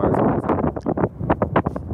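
Loud, gusty wind buffets the microphone throughout, a heavy low rumble that surges and dips in rapid bursts over two seconds.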